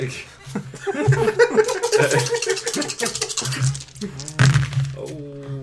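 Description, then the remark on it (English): Five black dice clatter and tumble across a table in a quick burst of small knocks and rattles as they are rolled in a game, with chuckling voices and murmured talk mixed in around them. “Yep, you need to roll five black dice? Oh, I know. Roll those.”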